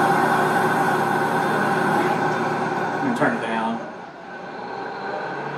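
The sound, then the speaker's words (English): A rock drilling rig runs at night in Zambia, drilling through rock, with a steady, loud mechanical roar and dense low rumble. A voice speaks briefly over it, and the noise drops in volume near the end. “You want to watch our video from Drilling at Night?”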